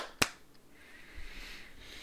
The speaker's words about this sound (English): And then, let's do a clap sync in 3, 2, 1.